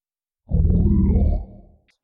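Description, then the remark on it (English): A person lets out a deep, growling roar lasting about a second, loud and harmonically rich, trailing off into a low rumble before a brief pause and a faint breath. “Tomias roars.”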